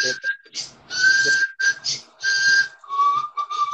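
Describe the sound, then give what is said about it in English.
A person whistles several held notes, breathy and airy with loud hissing air between them, the pitch dropping lower for the final stretch. “I can't do the whistle, though.”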